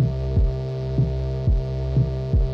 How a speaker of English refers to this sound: A curious humming sound that seems to come from inside the object.